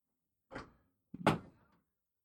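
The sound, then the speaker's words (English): A door opens with a soft clunk of the latch, followed moments later by a louder, fuller thud as it swings and settles as a guest walks in, with no one talking. “Seriously, nobody watching the door?”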